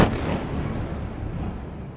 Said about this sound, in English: During a war, the everyday sounds of the world around you can be terrifying. Fighter planes flying low over your city, for example, or explosions in the far and not so far distance.